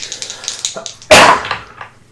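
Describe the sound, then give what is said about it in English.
A single sharp sneeze bursts out, loud and breathy, fading quickly, after a few faint tapping sounds in otherwise quiet surroundings. “Bless you all.”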